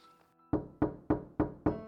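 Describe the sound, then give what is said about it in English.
Five firm knocks on a wooden door, evenly spaced and fairly loud, each with a short resonant thud, following a faint quiet start with no voices; a police officer knocking on the door of Casanova's room at 7 a.m. “on the morning after the attack, there was a knock on the door of Casanova's room.”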